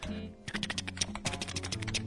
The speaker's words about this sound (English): he was typing some words into Google